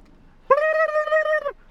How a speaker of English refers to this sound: Are those vultures? Or are they just turkeys?